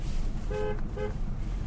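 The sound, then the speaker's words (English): A driver gives two short car horn beeps in quick succession to a friend driving by, each a bright harmonic tone around half a second long, over a steady low rumble of traffic or engine noise. “Yeah, I give him the double beep to turn around and go to the Tavernooch.”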